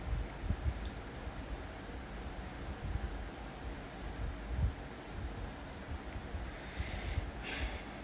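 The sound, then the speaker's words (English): Steady rain falling, a dense, even hiss of patter with no voices, holding at a constant moderate level and briefly brightening with a sharper hiss near the end. “I hope the rain isn't deafening.”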